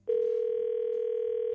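A loud, steady telephone tone hums without a break, as if a phone line is open and ready for dialing. No one speaks.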